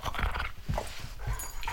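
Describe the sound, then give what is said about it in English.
A dog named Murphy snuffles and pants while trying to eat something in a dog playroom, with a few short scrabbling bursts of noise over less than two seconds and no one talking. “That was Murphy who was trying to eat it.”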